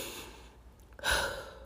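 A slow, deep breath taken close by: a soft, faint intake, then a fuller, airy exhale that swells and gradually eases off, with no talking.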